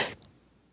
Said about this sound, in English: I almost sneezed on you there.